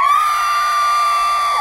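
A child being swayed back and forth screams loudly, one sustained, piercing, high-pitched cry that holds steady without a break from start to finish.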